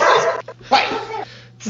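A dog barks in a few harsh, fairly loud bursts, one short yip between longer barks, separated by brief pauses.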